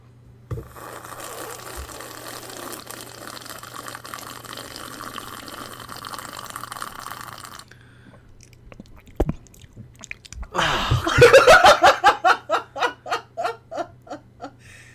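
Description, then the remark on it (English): A long, loud, noisy slurp of hot coffee in the morning, followed after a short pause by a burst of rhythmic, breathy laughter. “It's not good anyway, but it's definitely not as good because here in the morning, we like to just take a good old sip of coffee.”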